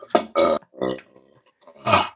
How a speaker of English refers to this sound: Man, you're you must have some kind of filter because I'm sure these burps would just be raging.